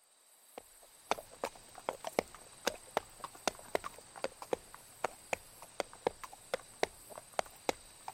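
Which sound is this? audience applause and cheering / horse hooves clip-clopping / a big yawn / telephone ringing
horse hooves clip-clopping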